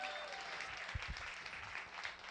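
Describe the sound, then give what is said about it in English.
A church audience applauds for marriage, many hands clapping in a dense, steady patter that holds for a couple of seconds, with a few low thumps mixed in and no clear speech over it. “Can we give a hand clap for marriage?”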